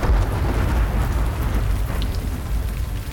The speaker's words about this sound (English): It's the evening of the capture. Only distant thunder breaks the silence.